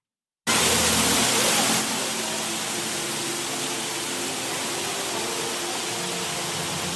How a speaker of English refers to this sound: come a day or two early and go check out a place like Ruby Falls. Check out this waterfall they got in there.